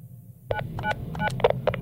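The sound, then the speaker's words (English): A quick series of phone keypad dialing tones as someone dials to call a friend, about eight short beeps in uneven bursts, clear over a low background hum, with no talking. “Haan, but still, let me call him ek bar.”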